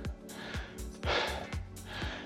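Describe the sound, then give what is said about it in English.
Heavy, rapid breathing, a steady run of loud inhales and exhales with brief sharp catches, from someone still winded after a hard running interval. “And it's definitely, my breathing hasn't recovered quite as well as it had the last time round.”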